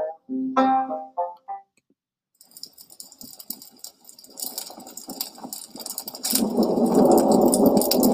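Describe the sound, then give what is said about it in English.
A thunderstorm: crackling rain patter builds, then a loud, deep roll of thunder rumbles in and keeps growling steadily to the end, following a few brief tones at the start. “That storm sure is a-stomping around out there like a spoiled child throwing a tantrum now, ain't it?”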